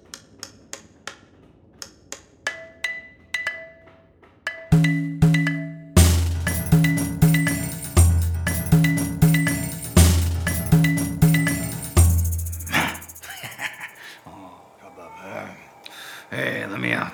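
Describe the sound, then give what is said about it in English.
Sharp metallic clanks ring out in an uneven rhythm, sparse at first, then a rapid, louder run of strikes over a steady low thumping beat. “Back to hammering.”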